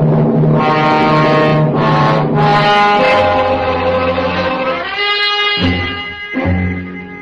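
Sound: police squad cars arriving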